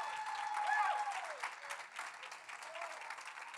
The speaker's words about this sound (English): Y'all give my unit a round of applause.